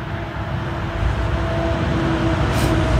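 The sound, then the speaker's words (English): Steady road traffic of cars carrying people off to work rumbles, a continuous low wash of engine and tire noise with a faint tonal hum running through it, no voices present. “I bow to the cars.”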